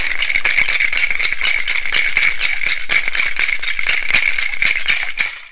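A cocktail shaker holding brandy, lime juice and Cointreau for a sidecar rattles hard and fast for several seconds, ice clattering in a steady, vigorous rhythm with bright metallic, high-pitched clinks, then it stops abruptly. No one speaks.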